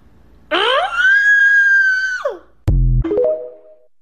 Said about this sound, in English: Yeah, I didn't need the scream at the end, but... I know, she's kind of hot, though.